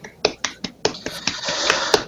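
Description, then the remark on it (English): A brief, small round of hand claps, about eight or nine sharp claps in a quick, steady rhythm that blur into a slightly denser patter toward the end, with no voices. “I give a small applause.”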